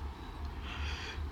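A breathy yawn: a drawn-out airy exhale that swells and fades over about a second, with no talking.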